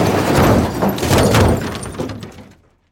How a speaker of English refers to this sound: I remember feeling the impact jar me from my seat. Something struck our car from the side. The sound of shattered glass and twisting metal mixed with the screams of my wife.